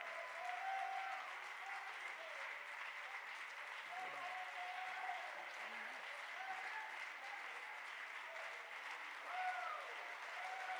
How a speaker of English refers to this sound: Why don't we just stand and clap our hands and praise Him right now? He's worthy.